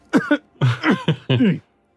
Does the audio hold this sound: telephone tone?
no